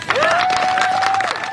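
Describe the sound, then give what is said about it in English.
A crowd claps steadily while cheering rises over it as reporters begin to holler out questions, with one loud sustained whoop or yell holding a steady pitch for about a second before fading back into the applause. “She stands there for a minute, chin up, unsmiling, as people clap and cheer and reporters begin to holler out questions.”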